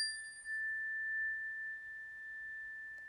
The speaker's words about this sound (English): We're going to start with the three cleansing chimes.